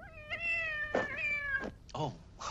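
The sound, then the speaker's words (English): A cat lets out a long, drawn-out meow, followed by a couple of shorter, rising meows, loud and clear with no talking. “And then the cat talks to Korob.”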